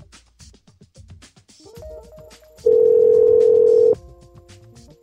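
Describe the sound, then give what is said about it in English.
Rapid clicks from handling a telephone lead into a steady dial tone, then a loud, sustained single-pitch beep and more tones as a number is dialed to call a criminal attorney. Clear, with no talking. “That's why I'm going to call an attorney right now.”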